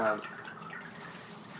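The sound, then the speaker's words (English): A short stream of a drink pours into a glass as someone pours themselves another one, a soft continuous gurgling splash that starts with a brief brighter tone and then settles into a steady trickle. “So I'm pouring myself another one.”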